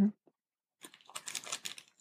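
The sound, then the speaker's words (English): Someone chewing food with a crisp, crunchy texture: after a short thump and a pause, a quick irregular run of crackly bites and munches at moderate volume, with no talking. “I start chewing.”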